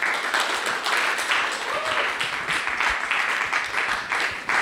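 A steady round of applause from a crowd, dense overlapping claps holding at an even loudness for several seconds with a faint voice briefly audible beneath.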